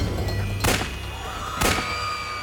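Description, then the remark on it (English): Two sharp gunshots ring out about a second apart, each a sudden loud crack that fades quickly, fired at the Pope in the Pope-mobile on the southwest side of a basilica's steps amid a gathered crowd, over a steady low background hum with no voices. “A loud gunshot rang out, followed by another.”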